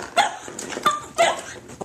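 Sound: dogs barking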